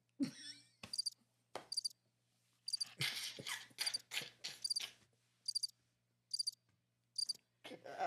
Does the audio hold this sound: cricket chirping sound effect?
yes